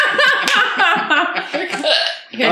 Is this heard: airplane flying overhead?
no